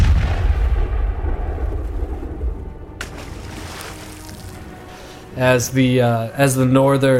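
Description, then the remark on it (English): A single heavy cannon blast cracks out over a low, rumbling background and slowly fades as the shot flies about 10 feet overhead, followed by a loud voice shouting. “So no, you see a cannon shot go flying maybe about 10 feet over your head up on the crow's nest shouting orders.”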